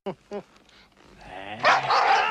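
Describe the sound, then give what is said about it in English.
A dog in a film scene gives two quick, sharp barks, followed by a louder, drawn-out yelping cry that rises and fills the rest of the moment. “Yeah, dog.”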